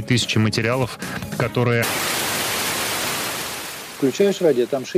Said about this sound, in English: he kept tuning in, out of sheer habit, to Echo's spot on the FM dial, until the white noise became a black hiss